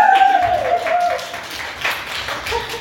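An audience applauds: a steady, dense patter of many hands clapping for about three seconds, fairly loud at first and then easing slightly, with some faint voices mixed in.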